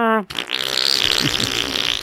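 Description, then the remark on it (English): A voice blows a loud, sputtering raspberry imitating a fart, starting with a brief buzzy tone and continuing as a long noisy blast lasting nearly two seconds, alone. “I started going to airport bathrooms just making really loud fart noises.”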